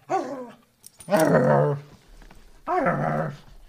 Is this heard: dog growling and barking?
yes